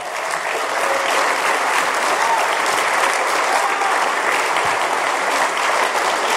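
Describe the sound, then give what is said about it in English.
A crowd claps steadily in a sustained round of applause for two men joining the speaker on stage. The applause is dense and fairly loud, holding an even level for several seconds without voices standing out. “Let's give them a big round of applause, too.”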